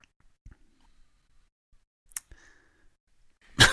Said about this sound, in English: Oh, crap. I was really hoping not to cough there.